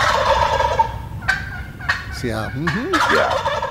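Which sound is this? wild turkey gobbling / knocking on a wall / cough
wild turkey gobbling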